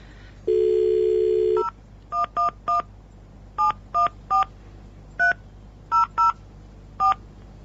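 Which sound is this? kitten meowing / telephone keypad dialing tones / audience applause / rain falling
telephone keypad dialing tones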